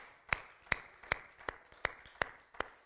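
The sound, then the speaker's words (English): An audience gives Jesus a hand clap at a night gathering, clapping in a steady, even rhythm: about seven sharp, crisp claps spaced roughly evenly apart, with no talking in between. “If you believe that, give Jesus a hand clap here tonight.”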